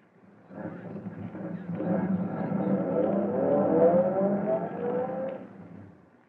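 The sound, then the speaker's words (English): A car engine rumbles up from idle and revs higher as the vehicle emerges from the shadows of an alley and accelerates, then eases off as it pulls to a stop alongside a police car waiting at a call box. It sounds fairly loud, with no voices. “waits for his car to emerge from the shadows. "All right, Vito. Pull up alongside that police car”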